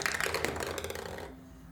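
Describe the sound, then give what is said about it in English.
A quick burst of dice clattering, a dense rattle of sharp little clicks that runs for about a second and then stops abruptly, leaving quiet room tone. “Changing it up. New dice.”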